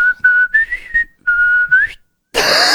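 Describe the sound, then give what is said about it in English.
A person whistles an imitation of a bird's call remembered from back home, a bird that sounded like the Ed, Edd n Eddy theme tune: a short tuneful phrase of clear, high notes that slide and waver in two bursts, followed by a moment of silence and then a hissy rustle. “Back in my home, there used to be a bird that sounded like the Ed, Edd n Eddy theme tune. It would go...”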